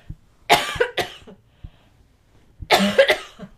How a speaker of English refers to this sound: I'm so sorry for the coughing